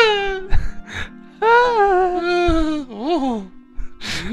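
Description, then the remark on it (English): A voice lets out several drawn-out, high-pitched screaming wails that slide downward in pitch, the longest one sustained and loud, ending in a wavering, shaky cry with brief breathy sounds between. “Scream corner!”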